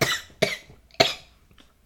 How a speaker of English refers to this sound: Gonna cough. Wait.